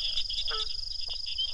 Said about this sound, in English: this recording of the dusky gopher frog's snoring croak from a pond in Mississippi